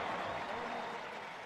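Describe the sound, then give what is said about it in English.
A large stadium crowd at an RSL soccer match applauds Chicho as he is substituted off, a steady, even wash of clapping and cheering that holds at a constant level throughout. “Chicho getting a hand.”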